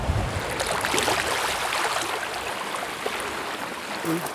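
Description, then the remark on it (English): Lake Superior water washes steadily over a pebble shore on a chilly day, a continuous hiss and gurgle of small waves and rattling stones, with no break in the sound. “The waves come and wash the pebbles out.”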